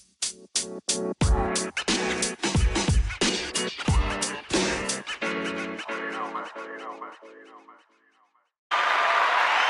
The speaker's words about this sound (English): Okay, no more applause.